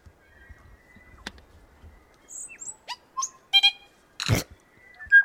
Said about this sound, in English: I'm going to guess that's Tui, right? He looks like he's wearing like a necklace. He's got like a lacy necklace with a little puff right around the neck there. A Tui. Tui is still going.